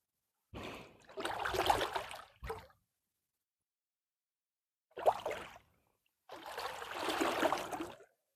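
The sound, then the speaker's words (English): Canoe paddling on the Murray River at Dwellingup, Australia, on a sunny day: several swishing, splashing paddle strokes in irregular bursts, separated by short quiet pauses, with water trickling off the blade and no voices. “Once again, we're out the Dwelling Up River, enjoying a beautiful paddle along.”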